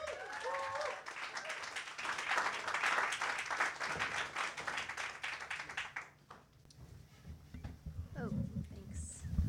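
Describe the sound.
An audience bursts into a dense round of applause with a brief whoop at the start, clapping steadily for about six seconds before thinning out as a voice begins speaking.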